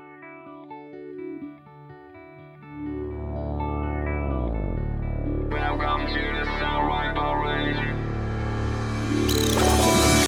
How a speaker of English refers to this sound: The next song is … by ….